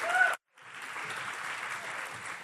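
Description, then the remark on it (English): A crowd breaks into steady applause for the panel speakers as they make their way up to the stage, many hands clapping in a dense, even wash of sound that drops out for a split second near the start, then carries on at a constant level. “Let's just give a round of applause to our speakers today.”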